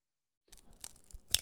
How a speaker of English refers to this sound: Observe, as I break this egg.